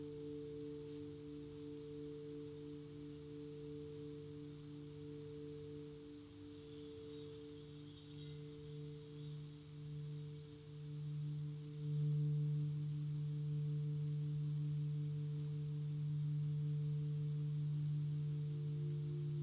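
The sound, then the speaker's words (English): Singing bowls and bells being played ring in a steady, overlapping drone of low, pure tones with a gentle wavering shimmer, swelling a little louder partway through and sustaining without pause; no one speaks. “If you wish at any point to open your eyes, take in the sights, and to watch the playing of the bells, the bowls, do so, but do it with consciousness, with mindfulness.”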